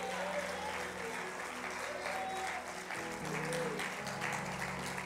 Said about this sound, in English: Somebody clap those hands and rejoice in the Lord.